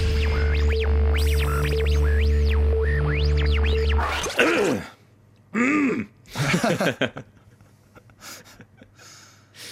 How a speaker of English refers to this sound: Oh, nothing funnier than coughing, isn't it?